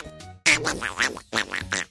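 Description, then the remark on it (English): A voice imitates Donald Duck, producing a burst of raspy, buzzy, nasal quacking syllables in two quick phrases with a brief pause between them. “He wasn't the one that talked like this?”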